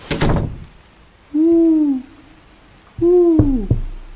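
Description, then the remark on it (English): A person imitates barn owl and screech owl calls: two drawn-out, wavering hoots separated by a short pause. A brief rustling burst comes first, and a few sharp knocks by the person sound during the second hoot. “Twice like a barn owl, once like a screech owl, please.”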